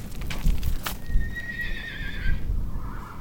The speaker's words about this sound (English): I'm standing outside a corral at the base of the LaSalle Mountains in southeastern Utah. Around here, you'll find plenty of horses